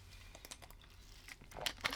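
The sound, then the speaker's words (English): Someone takes a sip of water: soft crinkling of a plastic bottle and small sharp clicks and slurps, growing a little louder toward the end, with no talking. “And I am going to take a brief second to take a sip of water.”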